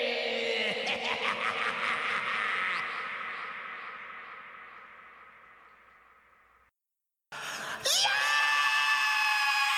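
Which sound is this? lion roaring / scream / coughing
scream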